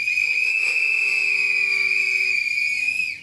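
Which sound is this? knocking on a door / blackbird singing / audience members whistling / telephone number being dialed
audience members whistling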